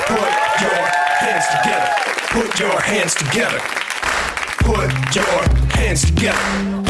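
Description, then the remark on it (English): A large audience at the end of a live show applauds and cheers loudly and continuously, with a few whistles early on, and music kicks in beneath the clapping for the last couple of seconds. “Let's hear for everybody you saw tonight.”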